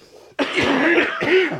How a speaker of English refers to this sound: I need to cough. Hang on. Oh, no, me too.